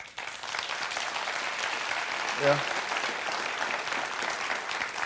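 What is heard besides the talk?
audience applause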